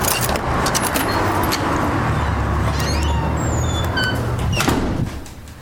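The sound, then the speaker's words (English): Keys jingle and clink with small metallic clicks as the lock of a downstairs door is worked and the door swings open, all over a steady low rumble of traffic; no one speaks. “Gotta find the key for the door. The downstairs door.”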